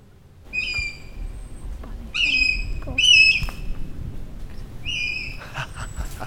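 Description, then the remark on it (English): A person whistles an imitation of an adult buzzard's call to fool a young buzzard into thinking an adult is nearby: four drawn-out, high, clear mewing notes with short gaps between them, fairly loud over a quiet rumbling background. “That's me whistling, seeing if we can fool the young buzzard into thinking that the adult is nearby.”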